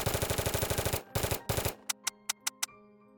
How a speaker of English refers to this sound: A man got out and kicked in the front door of the restaurant, opening fire on the interior.